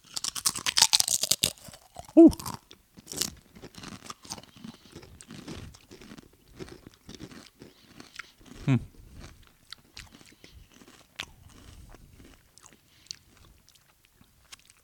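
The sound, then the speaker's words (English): A big dill pickle-flavored chip is bitten with a loud crunch, then chewed in a run of crisp crunches that gradually soften and thin out. No one speaks. “I definitely love the snap on it. Is it really a snap? Well, we use snap for the podcast. I know it's a crunch.”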